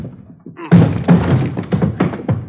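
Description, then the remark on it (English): A rapid series of heavy thuds pounds against a door, about six blows in quick succession after a quiet start, as police officers batter and force it open. “Hit the door.”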